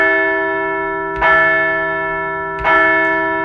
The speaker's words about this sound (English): So let's ring the bell for a fine night in South Philadelphia.